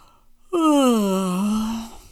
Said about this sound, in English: Now it was dark. Mama heard a yawn.